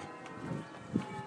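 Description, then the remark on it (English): Church bells ring faintly in the distance on a sunny Sunday morning, their sustained tones drifting over a quiet outdoor background with a single soft thump. “Just out enjoying the sound of the birds, the bells in the distance there.”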